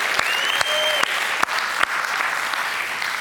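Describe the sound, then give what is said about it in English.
A crowd of adults at a morning service claps steadily with dense, continuous applause, cheering for the children aged 6 to 10 present, with a few sharper claps and a brief whistle cutting through, and faint cheering voices mixed in. “So can we, as the adults, just cheer for our kids being with us today, this morning?”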